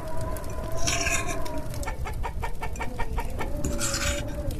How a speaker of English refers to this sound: What's that noise? Oh, right, there's chickens in here.